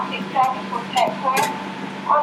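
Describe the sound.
Steady rumble and whooshing ventilation inside a moving train carriage travelling from Leeds to London King's Cross, a constant low hum beneath a broad hiss, with indistinct voices murmuring intermittently over it.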